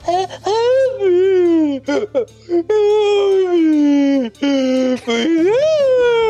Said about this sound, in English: But just before we started, there was a sick, horrible wailing sound.